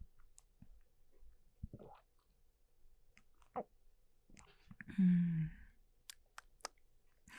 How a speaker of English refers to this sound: I want that to be my ringtone. From here on out. Nice little swallows.